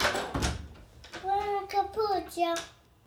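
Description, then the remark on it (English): A couple of quick clunks as a door is answered, followed by the speaker's youngest son, a young child, calling out in a high-pitched voice for a second or two. “Excuse me, in at a minute, you have my youngest son in the background. Let me just answer the door to him and we'll go on from there.”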